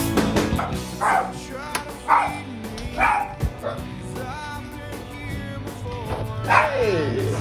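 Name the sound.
dog barking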